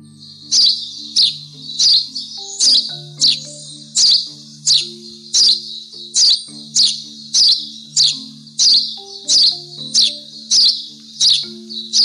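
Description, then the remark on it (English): A small songbird chirps sharply and repeatedly, roughly once a second in a steady rhythm, clear, over a faint low sustained tone in the background. “So, the birds in this story is the eastern bluebird, the house sparrow, and the white-throated sparrow.”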